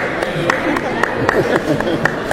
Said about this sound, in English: You're supposed to clap with me.